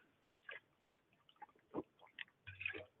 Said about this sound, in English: You are absolutely right. Let me take a drink.